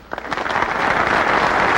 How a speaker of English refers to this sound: Basically, he says, you're clapping here for me.